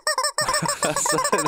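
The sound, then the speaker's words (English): A rubber chicken toy in a studio is squeezed, squeaking loudly and shrilly in a rapid string of short, honking bursts, with no one talking. “So we've got a chicken in the studio. So whenever someone during the show makes an outlandish or outrageous prediction, it will be squeezed”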